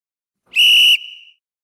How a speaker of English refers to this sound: Time for the third quarter. If you're a longtime listener, you know that third quarter whistle is always a little bit of trouble.